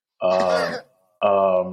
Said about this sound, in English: Are you coughing on purpose when I say it? Yes.